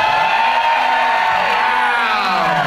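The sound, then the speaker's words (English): A live audience at the Ybor City Improv in Tampa, Florida, at a Doug Loves Movies show cheers and whoops loudly and continuously, a dense wash of shouts and high-pitched hollers with no pauses, sustained at full volume. “Wow. Hot crowd, literally and figuratively. Very hot crowd.”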